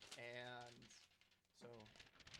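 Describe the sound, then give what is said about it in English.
Paper being rustled as a Foley effect to imitate wind through trees, a soft crinkling hiss between two short bursts of a person's voice. “We got some wind rustling right here. That's the trees, I want to say.”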